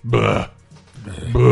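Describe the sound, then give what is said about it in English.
A voice imitates a grandfather's polite Italian-style burp with two loud, throaty vocal bursts separated by a brief pause, exaggerated in a cartoonish way, like a 1970s cartoon character throwing up. “My grandfather still burps in some fucking polite Italian way that's like, it sounds like a 70s cartoon character throwing up.”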